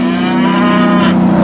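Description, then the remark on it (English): A cow moos in one long, steady, low bellow that fills the whole moment, loud, with no one talking. “You cannot be pulled over and get a ticket for mooing down the Autobahn.”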